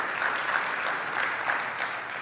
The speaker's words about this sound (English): So in 9 years, we planted 5 churches with your love and support. Can we clap for that? Thank you, church. Thank you.